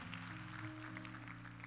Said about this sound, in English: God bless you. Let's give her a rousing applause.